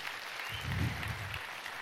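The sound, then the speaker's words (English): An audience in a church applauds, a steady wash of many hands clapping that swells slightly in the middle and holds at a moderate level, with no voices clearly standing out. “Give these guys a really big round of applause.”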